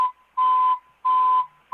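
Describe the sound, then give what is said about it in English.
A truck's reversing beeper sounds a steady mid-pitched electronic tone in loud, evenly spaced pulses, about three beeps in under two seconds, with a faint hum of the tone lingering between them. No one speaks. “The truck backing up.”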